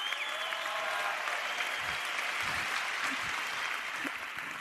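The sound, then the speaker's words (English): A crowd claps steadily, a dense, even wash of applause holding at the same level throughout, with no voices rising above it. “Clap it up if you're a fucking nerd.”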